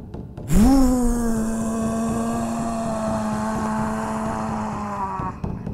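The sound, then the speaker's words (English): After a deep inhale together, a group of voices lets out one long, sustained roar imitating a lion as a breathing exercise. It swells up quickly, holds a steady, buzzing mid-low pitch for about five seconds, then stops abruptly. “As all the lions roar across the land”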